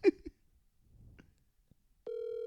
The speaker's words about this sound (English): The best format is the dead air of a ringtone. Pick up the fucking phone.